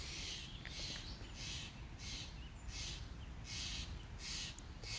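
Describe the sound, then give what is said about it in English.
Harsh, raspy bird calls from crows and scrub jays squabbling repeat in a steady series of about eight bursts over a low rumble of outdoor background noise, with no talking. “Well, we have crow and scrub jays going at it.”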